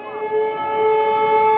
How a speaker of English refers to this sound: This is something that happens several times a day. Very often they say the sirens are almost back to back.